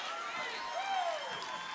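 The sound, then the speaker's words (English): An audience at Greg Locke's church claps in a dense, steady wash of applause mixed with crowd voices and cheering, with a short rising whistle cutting through midway. “You might as well leave while everybody's clapping so nobody will see you.”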